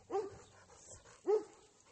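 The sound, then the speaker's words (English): Two sharp dog barks from two dogs that live in the same place, one barking at the other, spaced about a second apart and moderately loud, with quiet background between them and no talking. “the one dog barks at Ruffy, and then the other dog barks at the other dog for barking”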